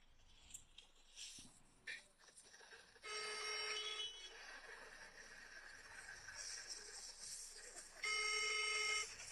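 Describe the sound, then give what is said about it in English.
A phone rings in bursts of bright, buzzing trills with pauses between them, fairly loud, over faint background noise with no talking. “why are you ringing them?”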